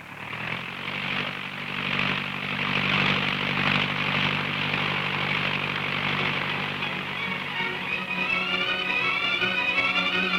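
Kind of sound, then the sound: vehicle, propeller airplane taking off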